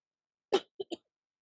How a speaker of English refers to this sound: This shit, I hope y'all ain't getting the loudness of the cough. I'm so sorry.